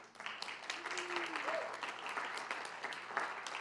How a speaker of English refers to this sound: Can we clap for that one?